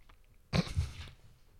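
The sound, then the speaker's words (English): A dog lets out a single heavy sigh, a breathy rush of air lasting about half a second. It starts with a low huff, then trails off into quiet. Nobody speaks. “Your dog just sighed so heavily when I said that.”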